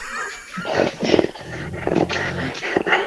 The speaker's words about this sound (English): And we want to talk to you, of course, about your pets in between growls and snorts and claws.